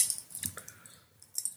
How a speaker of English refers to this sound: as soon as he says that, he starts jangling keys off camera. So you're just going to hear keys over and over again. I'm not sure he realizes that's picking up